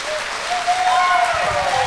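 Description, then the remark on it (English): A crowd at a live radio event applauds to show they are glad that HB 481 passed: a dense wash of clapping hands that stays loud and even throughout, with faint whistles or cheers rising above it. “All right, how many, by applause, because this is radio, are glad that 481 passed in this crowd tonight?”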